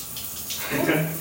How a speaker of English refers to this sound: Okay. It's a shower.